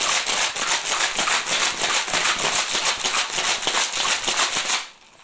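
Ice rattles hard inside a metal cocktail shaker wrapped in a tea towel as a drink is shaken, a loud, steady, rapid clatter of rhythmic shakes lasting nearly five seconds before stopping abruptly. No one speaks.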